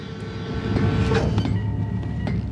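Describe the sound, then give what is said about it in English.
A sci-fi space station door in the style of Star Trek: Deep Space Nine (DS9), the Admiral's Club door, slides open: a steady, loud mechanical rumble with a couple of sharp clunks midway and a thin high whine near the end, with no voices. “So these are DS9 doors we're listening That's to.”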